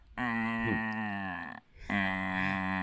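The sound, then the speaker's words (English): A voice imitates a cow's moo: two long, droning, moo-like calls, loud, separated by a brief pause, with no other talking. “Sounds like kind of like a cow, like just a slowly walking, like a cow that's standing in front of your car on the road, you know, just looking at you like, "Fuck with me," they're saying.”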